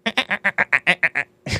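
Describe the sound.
A person imitates a dolphin, voicing a quick run of about nine nasal, squeaky chirps in steady rhythm, fairly loud, ending with a short breathy burst.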